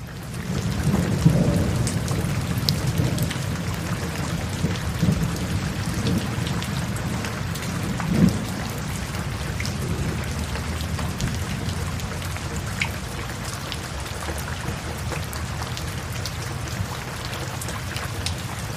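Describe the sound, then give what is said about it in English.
Heavy rain pours steadily while deep thunder rumbles roll in and out, swelling a few times before fading back into the constant hiss of the downpour. No one speaks. “Neither the rocket nor capsule suffered any damage during Saturday's thunderstorms.”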